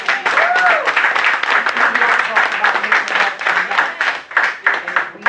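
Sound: round of applause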